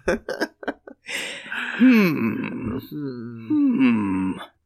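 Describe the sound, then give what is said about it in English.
A cartoonish fart sound effect: a few quick sputtering pops, then a long, buzzy, wavering blat that bends up and down in pitch before cutting off. No one speaks over it. “Yeah, be hands on with your fart noise options.”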